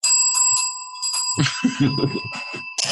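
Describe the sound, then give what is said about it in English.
A bright bell rings several times in quick succession to give a rating of 3.5 bells, its clear metallic tone lingering throughout, joined partway through by a busier, rumbling clatter underneath. “So I give it a 3.5 bells.”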